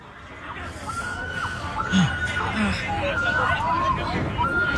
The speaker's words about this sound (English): Then you can see everyone's like, oh, my God, everyone's like turning around. I think you can hear the girl screaming, I think. Listen.